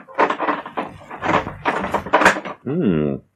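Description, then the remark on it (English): A voice talks for a few seconds, then the door of a gun cabinet holding a newly invented submachine gun creaks open with a short, steady, pitched squeal of the hinge that bends upward and back down before stopping. “It was in the cabinet, and I wish to do some work on it. I'll open the door, and I'll show you.”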